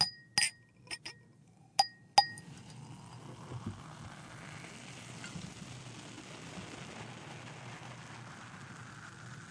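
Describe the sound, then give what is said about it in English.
A few bright glass clinks ring out at the start, then a steady soft crackling fizz of champagne bubbling in a glass filled to the top, its foam rising to the edge without spilling over, with no talking. “You got that foam to go up there, but not over the edge. And then you've got these bubblies.”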